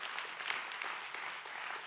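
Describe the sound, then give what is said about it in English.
A church crowd breaks into sustained applause for Jesus over last year's 6,184 salvations and 204 baptisms, a dense, steady wash of many hands clapping at an even, fairly loud level with no voices standing out. “Come on, give Jesus a big hand clap for that.”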